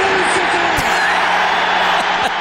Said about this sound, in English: The crowd reaction is amazing. One of the greatest moments in NFL history